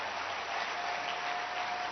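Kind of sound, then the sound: crowd, audience clapping hands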